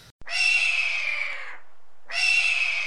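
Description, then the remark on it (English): A voice imitates a hawk with two loud, drawn-out, raspy screeches, the first lasting over a second, then a short pause before the second, briefer cry. “Do we do hawk noises?”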